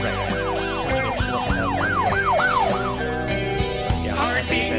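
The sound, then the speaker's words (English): A wailing emergency vehicle siren sweeps up and down in quick repeating cycles, loud over a steady engine rumble, with a brief shift in the pattern near the end. “Such a crisp siren.”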